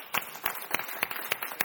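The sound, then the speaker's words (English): An audience claps hands together in a steady rhythm as a hand clap of praise to the Lord, about six sharp, fairly quiet claps over a constant hiss of background noise, with no talking. “But I think we just need to give the Lord a hand clap of praise for what he did today.”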